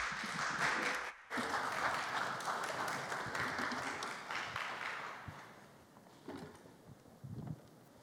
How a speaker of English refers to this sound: thanks for clapping. That was really kind of you.